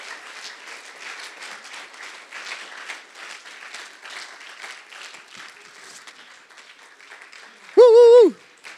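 A crowd applauds steadily for several seconds, a dense patter of many hands clapping, then a loud warbling whistle with a bending pitch cuts in briefly near the end.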